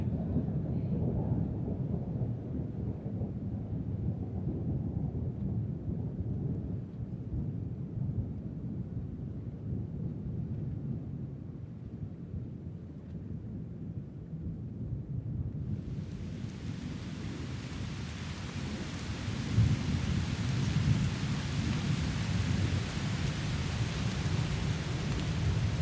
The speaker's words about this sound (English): Finally, as the day drew to a close, a great storm whipped up, coming eastward from the Great Lakes.